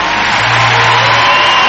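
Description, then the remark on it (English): A loud, continuous wash of audience applause and cheering in a church fills the whole clip, dense and steady without a break, with a low hum underneath and no talking. “Oh, why don't you put your hands together for”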